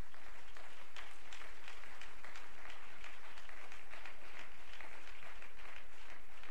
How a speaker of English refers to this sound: In Jesus' mighty name we pray, and let's clap our hands to him again.